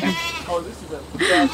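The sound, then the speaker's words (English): A goat bleats twice, a wavering nasal cry followed by a louder, higher bleat near the end, with faint outdoor background noise, as goats are led by hand down a grassy slope into an overgrown yard to eat weeds. “I was given the honor of guiding one of the goats to the weed buffet.”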